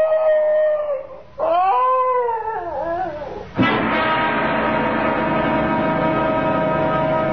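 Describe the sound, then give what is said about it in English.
A dog howls loudly in long, wavering cries: two drawn-out howls that rise and fall, then a third that swells suddenly and holds steady to the end. No one speaks. “Now, what's all that? Why, it's the Higley dog.”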